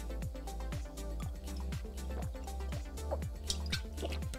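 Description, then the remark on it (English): Mountain Valley spring water glugs in a quick, steady rhythm, about three gulps a second, fairly loud, as it is poured or drunk, over a constant low hum. “Mountain Valley spring water, baby. Only the best.”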